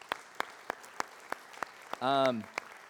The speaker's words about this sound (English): Let's give a round of applause to our band this morning. They did an awesome job.